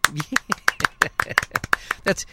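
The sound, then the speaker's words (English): Slow, steady fashion-show style clapping: about a dozen sharp, evenly spaced claps from what sounds like one pair of hands, with a faint voice murmuring underneath at the start. “That's one of those fashion show claps.”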